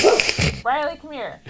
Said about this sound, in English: She's just barking at somebody out the window.